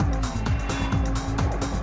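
A video game racing car engine roars loudly and continuously, its pitch repeatedly sweeping up and down as gears shift, with a bright, buzzy electronic edge.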